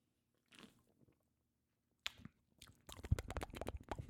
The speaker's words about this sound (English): I'm going to get a little drink of my High Noon I'm sipping on real quick.